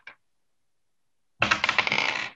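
A brief faint click, a pause, then a burst of eight-sided dice clattering and rattling across a hard surface for about a second, fairly loud, with no talking.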